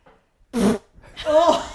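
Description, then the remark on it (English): A voice imitates a fart with the mouth: a short buzzing burst, then a longer, wetter, sputtering raspberry sound, both fairly loud with no other talking. “She wants to know what the sound that your ass made.”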